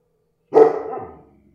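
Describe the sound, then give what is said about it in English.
A single loud dog bark with a sharp onset and a short ringing tail, standing alone against silence with no talking. “Hey, dogs are always tough when they are around.”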